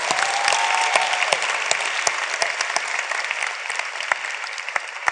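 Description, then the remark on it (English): A crowd claps steadily for several seconds, a dense patter of many hands with sharp individual claps standing out, fairly loud and sustained without anyone speaking. “But some are not clapping.”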